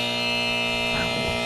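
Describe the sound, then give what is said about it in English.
A harsh, loud quiz wrong-answer buzzer drones steadily for over a second after a contestant's wrong answer, rich and raspy, with a brief murmur of voice sounding faintly beneath it near the end. “Oh my God, that buzzer is just the best thing ever.”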